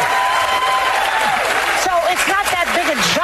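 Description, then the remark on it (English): A studio audience claps steadily and loudly for a few seconds, with whoops and cheering voices rising and falling over the dense applause toward the end. “Now cheer, all the other misfit menopausal morons.”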